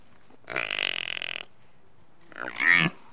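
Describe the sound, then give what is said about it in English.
A four-day-old water buffalo calf gives two rough, throaty grunts, first a long buzzing one, then a shorter rising call after a brief pause, fairly loud with no talking. “It's a combination of what a pig, a horse, and an elephant make.”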